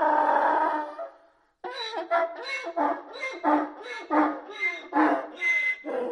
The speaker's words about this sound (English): So let's hear how different these noises are. And here's a horse. A donkey.